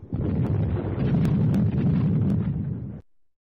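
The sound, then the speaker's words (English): A thunder and lightning sound effect: a loud, deep rolling rumble lasting about three seconds, with a few sharp crackles on top, ending abruptly. No voices are heard. “There's a thunder lightning.”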